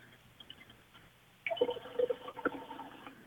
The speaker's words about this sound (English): No, I'm taking a drink of water. Oh, I heard like. Were you getting the water, the glass of water from the sink? Yes, I was. Oh, okay. It sounded like you're peeing.